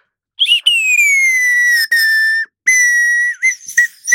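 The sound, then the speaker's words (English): Someone whistles an imitation of a nightingale's song: long, piercing high notes that slowly sag in pitch, split by brief pauses, then a burst of quick warbling trills at the end. “It's like there's a nightingale in the room,”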